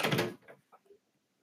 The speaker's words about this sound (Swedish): Hey, det var någon som gick in här. Hon bara kommer in och börjar. Jag ska stänga den här dörren. Låsa den.